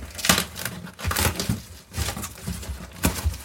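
Crinkling and rustling of cardboard and paper packing as a box holding a book is unpacked, coming in irregular bursts of scrunching and crackling with brief lulls between handfuls, and no voices.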